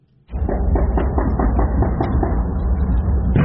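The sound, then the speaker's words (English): A recording of gunfire and explosions in a neighborhood in Kansas City: a loud, dense barrage of rapid gunfire erupts after a brief quiet moment, sharp cracks repeating in quick succession over deep rumbling booms, continuing without pause and with no voices. “You guys want to hear audio of the gunfire and explosions sure. in the neighborhood?”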